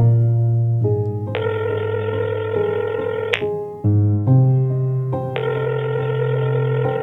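An electronic telephone ringtone plays loud, a sustained buzzy tone that steps between a few pitches for several seconds, with no voices.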